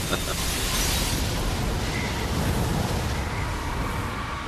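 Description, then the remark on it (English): A loud, sustained explosive roar with rushing, crackling noise from an explosion as debris hits a control room window that is about to breach, holding steady for several seconds without fading. “The control room window's just been hit by a piece of debris from the explosion. It's about to breach.”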